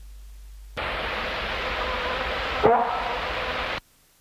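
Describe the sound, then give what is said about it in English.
One short, gruff bark or bok call of a South Island kōkako, recorded on 2 December 1984, cuts briefly through a steady wash of tape hiss. It sounds just once, low and abrupt, and nothing follows it. “5, deer bark or bok call, 2nd of December 1984.”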